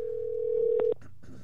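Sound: telephone call being dialed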